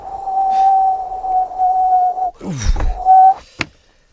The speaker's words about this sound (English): It's brass monkeys out there. Oh, yes, I can hear the wind. Let's shut that window.